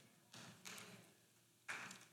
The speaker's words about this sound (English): Thank you for those three claps.